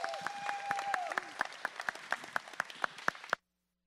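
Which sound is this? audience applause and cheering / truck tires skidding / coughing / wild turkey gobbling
audience applause and cheering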